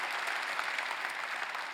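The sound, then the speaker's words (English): An audience applauding, a dense, steady wash of many hands clapping that holds at an even level for the whole short stretch, with no distinct voices rising above it. “Come on, let's give them another round of applause, all of our campuses.”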